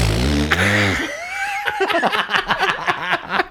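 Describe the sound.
A loud, buzzy fart noise blown with the mouth after a long wind-up leaning all the way back in a chair, lasting about a second, followed by chuckling and quick chatter from voices.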